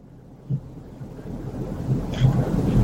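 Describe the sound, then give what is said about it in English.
A low, distant thunder rumble from a faraway thunderstorm rolls on and builds steadily, with soft rain-like texture on top and no one talking. “There's a thunderstorm far away. Lightning can still strike.”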